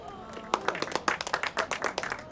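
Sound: clapping hands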